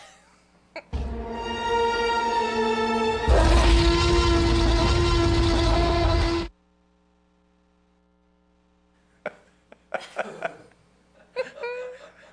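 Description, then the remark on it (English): A person imitates a dad loudly blowing his nose: a long, harsh, honking blast in two surges lasting about five seconds, followed by a hum and soft laughter and talk. “And so have you ever like seen a dad go to the bathroom to blow his nose? Yes, I have. And then this unholy sound comes out of the bathroom.”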